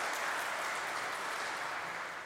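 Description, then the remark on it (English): An audience in a church applauds steadily to thank the people who decorated the church, a dense wash of many hands clapping at once with no gaps or voices, holding an even level throughout before easing slightly at the end. “So we have to give thanks to them and clap it.”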